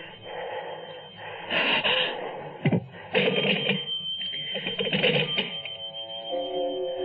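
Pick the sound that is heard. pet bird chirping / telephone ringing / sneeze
telephone ringing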